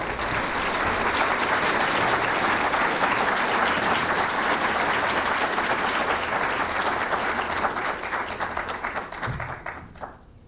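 A crowd applauds steadily for a speaker who is about to speak, a dense wash of many hands clapping at even loudness for several seconds, then thinning into scattered claps as it fades out near the end.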